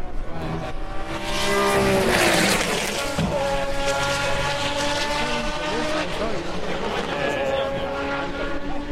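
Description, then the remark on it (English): A classic Le Mans Group C Jaguar race car roars past on a circuit, its loud engine note swelling to a peak early on, then holding a sustained, harmonic whine as it carries away along the track. “So, as you say, Silkut Jag. Here comes another Silkut Jag. Let's listen.”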